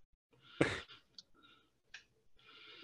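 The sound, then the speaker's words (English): A handful of soft, irregular keyboard clicks and taps, quiet, with short pauses between keystrokes and no one speaking, as someone types a note about bonus points during a quiz. “Okay, so just typing it so I remember that I'm giving you two extra points if you get that right.”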